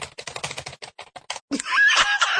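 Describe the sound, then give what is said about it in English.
Rapid clattering of computer keys as people type on computer keyboards in quick bursts, looking something up on the internet, then a louder sustained squealing, whinny-like sound takes over. “Dueling keyboards!”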